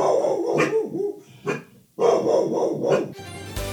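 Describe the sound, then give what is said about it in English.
Dogs bark loudly in a rapid, overlapping burst of yaps and woofs lasting a few seconds, with a short pause midway before the barking starts up again. “Who could the dogs possibly be barking at?”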